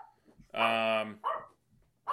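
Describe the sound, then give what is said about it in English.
A dog in a household barks: one long, loud harmonic bark followed by two shorter ones, with background voices faintly audible between them. “So we're just gonna let them bark, or do you have control of your own household, or what's that working?”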